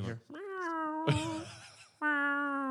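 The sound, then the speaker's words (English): A black and white cat named Jess, hidden among parcels in the back of a van, meows in two long, drawn-out yowls, loud, with a short burst of scuffling noise between them and no talking. “And a black and white cat jumps on your face.”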